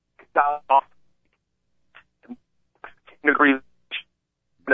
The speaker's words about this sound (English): Yeah, the old cell phone's coming in and out.